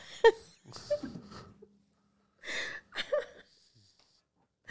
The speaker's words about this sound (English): Sorry, I keep sniffling too.